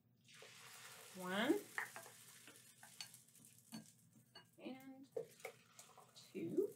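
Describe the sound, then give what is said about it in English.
Batter cooking in a waffle iron, about 1/4 cup poured into each square, gives off a steady, soft sizzling hiss throughout, with a few brief voiced sounds and small clicks rising over it. “So I've got 1/4 cup of batter, and I'm going to put 1/4 cup in each square of my waffle iron.”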